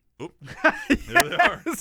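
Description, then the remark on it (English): A few sharp hiccups burst out at uneven intervals, each a short voiced gulp, mixed with breathy vocal noises in between. “We got the hiccups.”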